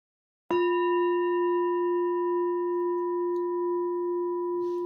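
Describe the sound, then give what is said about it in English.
A single meditation bell is struck once during a vipassana meditation practice, giving a sharp onset and then a long, steady ringing tone with bright overtones that sustains almost without fading. No one speaks. “And let's do that as I ring the bell.”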